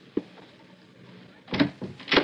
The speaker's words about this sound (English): Wait till he opens the door.